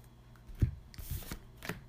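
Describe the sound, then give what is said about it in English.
A deck of trading cards being shuffled as the library during a card game, a quick series of crisp riffling bursts and soft thumps over about two seconds, with no voices. “Oh, then shuffle your library.”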